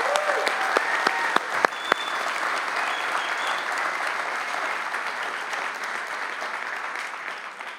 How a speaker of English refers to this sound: Can we give another round of applause for our veterans, our service people?